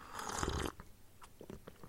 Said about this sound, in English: Just pause there a sec. I'm going to have a sip of tea here.